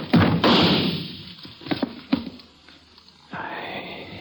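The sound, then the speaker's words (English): A wooden chair is shoved hard by hand in the dark with a rough scrape, then topples over in a quick series of sharp clattering thuds, followed by a dull rustling noise. No one speaks. “The bullet splintered into the chair before it even toppled over.”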